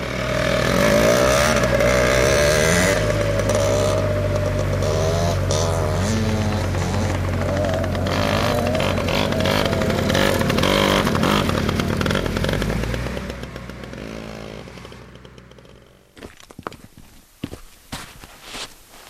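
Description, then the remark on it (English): Off-road vehicle engines roar and rev loudly, whining through rising and falling pitches as they ride fast, then fade out around sixteen seconds, leaving scattered crunching footsteps and light clatter. “as long as you don't tear it up, or in other words, ride real fast. Riders are pushing to open more land, including parks, to these vehicles.”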